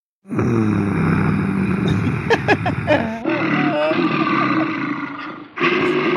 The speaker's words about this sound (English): Almost didn't know that was the bear growl that came second until I got halfway through